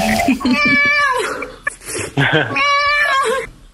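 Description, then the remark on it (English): A cat meows loudly and excitedly, two long drawn-out calls with short chirpy sounds between them. “You got the cat all excited, man.”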